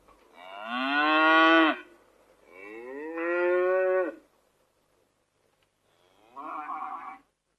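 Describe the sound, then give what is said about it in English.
Cattle in a cattle shed moo three times in a row: two long, loud, drawn-out lows followed by a shorter, fainter one after a pause, with no voices present. “The couple sadly left the town and found a cattle shed to sleep in.”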